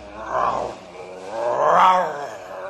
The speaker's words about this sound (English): What's that? A grizzly bear. Shoot! Shoot it! You build up fire. He not bother us.